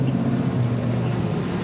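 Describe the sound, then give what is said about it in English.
Steady low engine drone and rumble from inside city bus number 56, a constant hum with faint rattles, continuous and fairly loud throughout, no voices. “Okay, so I'm on the bus. I'm on bus 56.”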